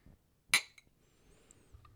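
A single bright clink of glasses of Balvenie Old Fashioned touching together in a toast at a basement bar, sharp and ringing, followed by a faint second tap and quiet rustle.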